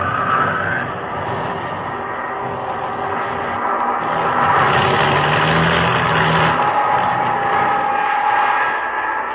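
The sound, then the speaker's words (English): A struggling aircraft engine with engine trouble, flying over the ocean, drones loudly and continuously, a rough, grinding roar with a thin whining tone on top that swells slightly midway. No voices are heard. “And when the motors conked out completely”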